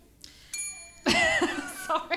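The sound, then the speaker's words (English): A bright hand bell rings once after a 3, 2, 1 countdown, its thin metallic tone hanging briefly, before loud voices and chuckling burst in over it. “So I'm going to say 3, 2, 1, and then you ring the bell.”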